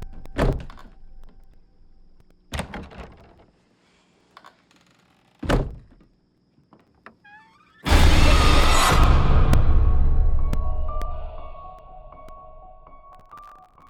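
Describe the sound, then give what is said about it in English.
Three sharp, heavy thuds land a couple of seconds apart, then a closet door slams shut with a loud crash that rumbles and slowly fades. No one speaks. “Can you close the closet door?”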